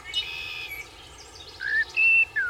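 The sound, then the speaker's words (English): A bird chirps in a run of bright, high-pitched whistled calls, some short and some drawn out, ending in a few louder sliding tweets over a faint low background hum. “That bird's trying to be fucking nuts.”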